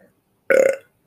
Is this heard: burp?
yes